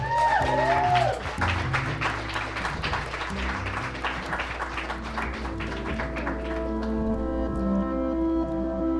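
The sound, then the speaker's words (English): An audience at a Second Story storytelling event claps steadily for several seconds as a storyteller is introduced, a dense spatter of hand claps that tapers off toward the end, with a low sustained musical tone and a few rising whistle-like notes at the start. “With his story titled, The Lovely Dark-Haired Girl, Second Story proudly presents Andrew Riley.”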